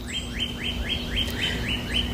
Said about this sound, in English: That pew-pew sound sort of sounds to me like a fake little laser beam gun. That's a northern cardinal.